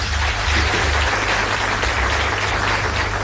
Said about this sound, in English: Friends, please join me in a round of applause for ANC MP Pravin Gordhan.